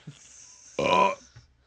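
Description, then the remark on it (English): A single loud burp rumbles out for under half a second, surrounded by near silence with only faint breathy noises before and after. “the fucking burp is louder.”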